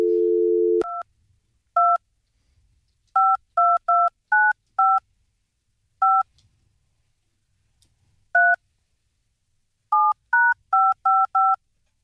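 A brief dial tone gives way to a string of about thirteen touch-tone beeps from a phone dialing a number, dialed in uneven bursts with pauses between groups, clear with no talking.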